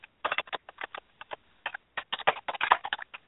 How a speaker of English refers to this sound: Why is the typing really distracting? I'm sorry. Sorry. You know what it is? I want to know what she's typing.